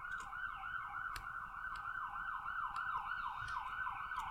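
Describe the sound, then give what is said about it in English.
An ambulance siren wails in a fast, repeating rise-and-fall pattern, loud and steady over low traffic rumble, as the ambulance passes along the street going by St. Paul's. “Oh, sorry, there's the customary ambulance going by St. Paul's.”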